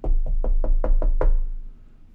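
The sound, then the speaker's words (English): A quick run of seven solid knocks on a door, evenly spaced in a steady rhythm, fairly loud, with no voices and a brief quiet tail after the last rap. A police officer is knocking at the door. “Cop at the door.”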